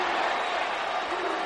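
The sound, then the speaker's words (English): A large wrestling arena crowd roars and cheers for Kurt Angle in a dense, steady wash of noise, loud and continuous across the whole moment with no single voice standing out. “Listen to this crowd. Boy, he's igniting the whole crowd.”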